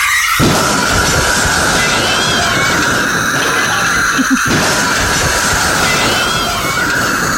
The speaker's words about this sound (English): Here's the milk. Steam in your milk, sir. Won't be a moment.